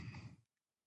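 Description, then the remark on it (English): A single sharp sneeze bursts out, breathy and noisy, lasting under half a second before cutting off into silence. “Bless you.”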